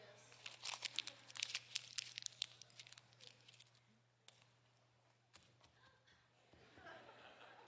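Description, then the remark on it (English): Crisp crinkling of a $20 paper bill being crumpled up, a burst of sharp rustles over the first few seconds, then quieter scattered crackles and a soft scuff as it is stepped on, with faint voices and laughter. “But I crumpled it up. I stepped on it.”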